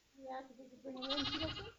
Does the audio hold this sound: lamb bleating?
yes